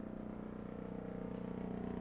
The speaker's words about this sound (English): Is that a helicopter? Or an airplane? No, it sounds like a helicopter. It's flying right over me here. But I think it's a military helicopter